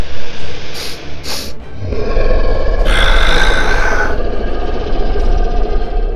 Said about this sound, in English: You hear it. You hear the sound of it sniffing.